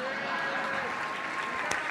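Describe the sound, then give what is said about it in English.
An audience applauds steadily for audience members standing because they had email in 1999, a dense, even crackle of many clapping hands, with a faint murmur of crowd voices mixed underneath throughout. “Okay, first, let's clap it up for these dinosaurs.”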